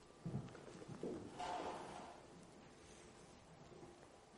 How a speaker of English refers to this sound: Close the doors over, please.